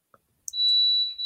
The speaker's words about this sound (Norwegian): Det en brannalarm som går. Nei, det var vannkokeren, fordi at vi sånn termostat. Ja, jeg får ikke høre pipen I det. Ja, det fordi vi... Ja. Sauemelken må være 40 grader, så nå stilte vi den inn på 40 grader. Det var det du hørte.